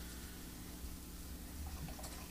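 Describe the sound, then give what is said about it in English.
A steady pour of black root stout into a glass, a continuous gurgling fill with a low hum underneath and no one talking. “Let me finish my pouring my black root stout and I'll take out my notepad.”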